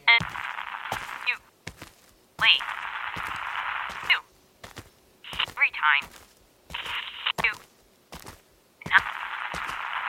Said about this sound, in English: And I was having trouble contacting her. The static became so unbearable that I only could make out every third word, which made communication impossible.